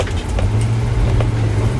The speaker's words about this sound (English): Anyway, I'm driving to a fucking destination.